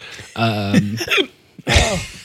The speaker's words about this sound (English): Sorry about my hiccups, people. He's got crazy hiccups. They keep coming back.